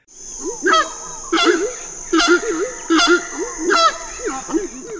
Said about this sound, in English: So a horned screamer is native to South America. The name is pretty descriptive. Its call is just a loud, echoing call.